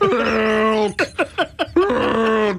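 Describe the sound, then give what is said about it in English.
A person's elk bugle call: a loud, reedy, high whistling tone held for about a second, then five quick rhythmic grunting chuckles, and the whistle returns. No one talks over it. “That's my elk bugle.”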